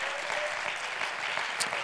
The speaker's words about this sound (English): Let's give the Lord a good hand clap of praise. Oh, thank you, Jesus. Come on, let's give him a good hand clap of praise.